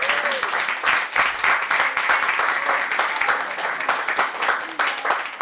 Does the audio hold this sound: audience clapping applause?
yes